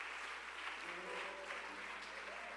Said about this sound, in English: Let's give our guests from our nation's capital a great big hand.